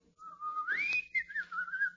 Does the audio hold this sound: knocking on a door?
no